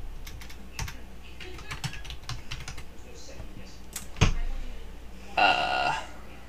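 Rapid, irregular clicking of keys on a computer keyboard, moderately loud, with a few sharper clacks and a brief burst of voice near the end.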